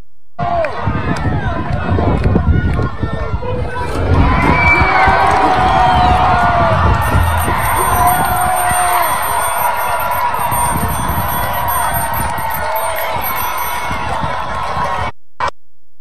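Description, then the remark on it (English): A massive crowd roars and cheers while tearing down a statue of Union general Ulysses S. Grant, a dense wash of shouting, cheering and overlapping voices that swells louder after a few seconds and stays loud, with occasional higher yells cutting through. “That's a massive crowd tearing down a statue of the Union general who won the Civil War for the North, and the crowd cheering”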